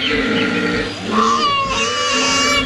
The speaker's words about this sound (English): The lady koala almost sounds like a bird chirping, right? And then the deeper grunt is the man.